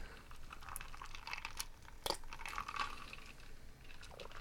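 A cat laps water from a glass, a steady run of soft wet clicks and slurps with one sharper tap partway through, fairly quiet and with no talking.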